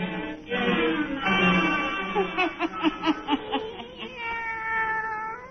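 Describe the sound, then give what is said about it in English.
Satan, a black cat, meows in long, drawn-out wavering yowls, loud, broken midway by a quick run of pulsing, chuckle-like cries before settling into another sustained meow. “Let us join Old Nancy and Satan, her wise black cat.”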